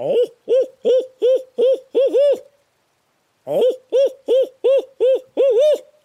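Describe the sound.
A loud imitation of an owl's hooting, used by a turkey hunter as a locator call in the early morning before daylight: two rhythmic bursts of about seven rising-and-falling hoots each, separated by a short silence, with no other sounds around them.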